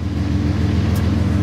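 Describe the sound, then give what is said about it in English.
A diesel train engine revs up as the train leaves the east end of the yard at Missoula, rumbling steadily with a strong low harmonic drone, loud and continuous throughout, with no voices present. “You can hear the sound of that diesel engine revving up.”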